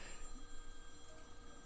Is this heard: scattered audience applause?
no